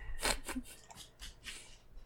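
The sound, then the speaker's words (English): A dog playing with one of his toys clicks his claws across a linoleum floor in a quick, fairly even series of sharp, light taps, about six or seven in two seconds, with no voices. “And our dog is click, click, clicking across the linoleum, and he's being super cute with one of his toys.”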